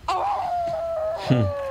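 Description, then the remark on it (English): Frances McDormand, reacting at the Oscars, lets out a long, wavering wolf-like howl that slowly slides down in pitch, followed by a shorter, lower second cry at the end. “Well, starts howling.”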